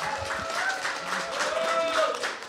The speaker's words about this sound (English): I was going to say, can you give an equally rapturous applause to the referees? But after what they've just said, tone it down a little bit. But still, thank you to the referees.